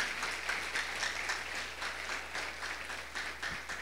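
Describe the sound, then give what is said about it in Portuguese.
An audience applauds God (the Father) for his love and grace: many overlapping hand claps form a dense, crackling wash that holds an even, moderate loudness throughout, with no speech over it. “Você pode aplaudir o Pai pelo seu amor e sua graça que nos acolheu, meus irmãos?”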